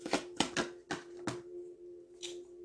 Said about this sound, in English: Let me shuffle my cards a lot.